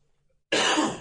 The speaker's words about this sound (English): You got your winter cough back?